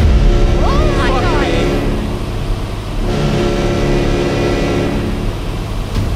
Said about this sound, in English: Whatever those boats are, they're making good time. They're also blocking off the entire bay.